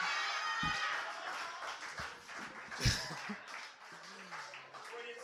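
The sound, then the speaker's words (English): An audience at a scored performance competition applauds a performer's piece, steadily as a dense, continuous wash of applause, mixed with scattered whoops, a few sharper thumps, and crowd voices throughout. “Freudian slip, but he's got balls for doing that piece, so give those a round of applause, too.”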